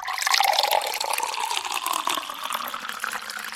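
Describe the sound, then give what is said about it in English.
Water pours and gurgles steadily into a container, like a cooler jug filling, with a bright, bubbly splashing that continues for a few seconds at fairly even loudness. “All right, let's move on to the water cooler question.”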